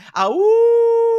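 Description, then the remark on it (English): A person's voice imitates a wolf howl as a cheer for the T-Wolves NBA team: a brief rising 'awoo' that quickly levels into a steady, sustained tone for about a second, loud. “Actually gave us a woo.”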